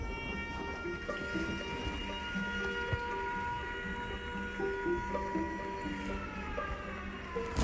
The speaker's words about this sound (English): You hear that siren? There's a war going on.